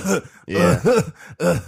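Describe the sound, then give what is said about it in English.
A voice mimics coughing with a quick series of four throaty, voiced bursts separated by brief pauses, fairly loud. “She just coughing.”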